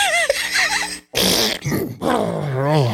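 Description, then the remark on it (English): A voice makes loud fart noises: a buzzy, wavering raspberry, a short pause, then a couple more sputtering blasts with pitch wobbles. “And they just farting, like they just think it's their personal bathroom.”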